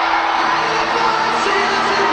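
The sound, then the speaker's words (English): A large wrestling arena crowd roars with sustained cheering and scattered whoops during Randy Orton's match against the Fiend, a loud, dense wall of voices that holds steady throughout without any single speaker standing out. “Listen to the crowd.”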